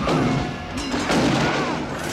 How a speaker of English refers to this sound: Oh yeah, automatic gunfire. That's probably a dangerous thing, isn't it? For a mercenary, he's not picking out his shots too well, is he? Yes. Pick your targets, watch your background.